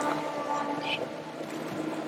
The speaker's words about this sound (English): That's a boat chase, but it's a, it was a motorized boat. Not exactly what I was looking for.